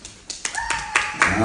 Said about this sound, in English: Okay, let's clap for her transparency.